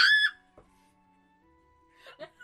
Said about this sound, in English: Why are you screaming, baby?